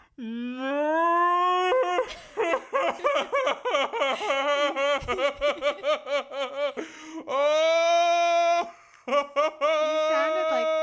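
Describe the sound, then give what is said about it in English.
A voice imitates a cow with long, drawn-out moo sounds that open and return near the end, separated by bursts of choppy, breathy laughter. “You sounded like that cow.”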